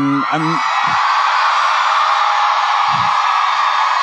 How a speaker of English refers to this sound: have you ever in your life ever had 3,000 people cheer for you at one time?